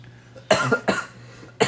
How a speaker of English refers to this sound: Quick cough break. I started choking on air, and I was like, I gotta hurry and cough.